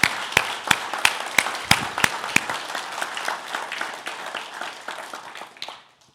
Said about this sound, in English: And so if you guys have enjoyed the music that we play this time of year, if your heart has been lifted, can we show that appreciation with a round of applause for them? Thank you.